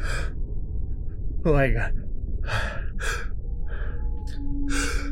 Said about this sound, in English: Oh man, what was that? You sneezed so hard that my desk shook.